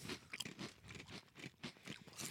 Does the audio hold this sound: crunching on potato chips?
yes